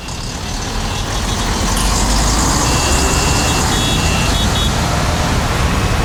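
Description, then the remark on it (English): Dense, steady city traffic rumble with engines idling, heard in traffic between Manhattan and the Prudential Center, while a truck's high reversing beeper chirps in short repeated pulses partway through the din. No one speaks. “That's a live listen into our Bob Stauffer stuck in traffic somewhere between Manhattan and the Prudential Center, where the Devils will host the Oilers in about 3 hours' time on 630 CHED.”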